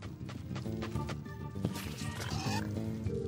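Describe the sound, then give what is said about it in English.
A pig just rescued in a video game oinks and grunts repeatedly amid busy game sound effects, the snorts fairly loud over a steady, cluttered background, with no one talking. “Just rescued some pig, dude.”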